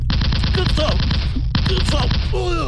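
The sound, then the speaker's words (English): Loud rapid-fire gunfire from an XK-46 flex cannon firing at a dummy made of Kevlar, two dense bursts of shots separated by a brief pause, with faint whistling tones mixed into the barrage. “All right, we're firing at a dummy made out of...”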